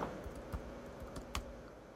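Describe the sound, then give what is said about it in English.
Light, irregular tapping on a new slim Apple computer keyboard: a handful of crisp key clicks spaced unevenly over a couple of seconds, fairly quiet, with no voices. “Typing away in my new slim Apple keyboard.”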